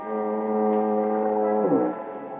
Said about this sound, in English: It's cool, quiet, except for the monotonous moan of the foghorn down at the point near San Quentin Prison.